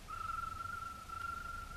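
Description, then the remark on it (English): A single sustained signal whistle from a man in the hills, like a bird call, holds one steady mid-high pitch for about a second and a half over a faint low rumble, with no talking. “It's …. That's his whistle.”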